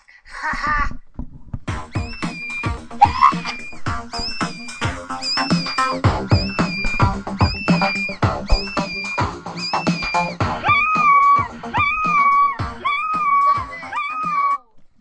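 A screaming novelty song: short, high, wavering shrieks repeat in a regular pattern over a steady thumping beat, with the cries dropping lower toward the end.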